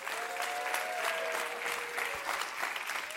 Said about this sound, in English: Today we celebrate Independence Day. Clap your hands and cheer for that.